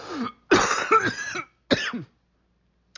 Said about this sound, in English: there's that COVID cough.